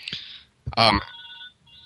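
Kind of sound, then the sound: household object, telephone ringing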